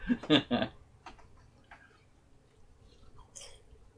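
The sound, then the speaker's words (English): Crisp crunching of chips being chewed: three loud crunches in quick succession, then a few faint clicks and mouth sounds in otherwise quiet surroundings. “I can't wait to hear how loud our chips are crunching on the audio of this.”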